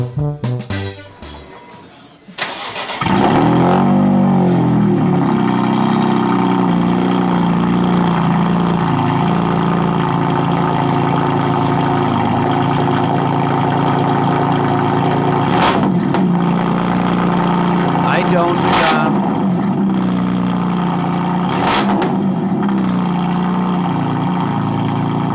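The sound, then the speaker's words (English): A car engine starts, then holds a steady idle with a low rumbling hum, broken by a few short revving bursts near the end. No one speaks. “That's either 4 or 8 cylinder, right? No, that's a 6.”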